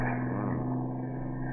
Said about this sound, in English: I don't like this engine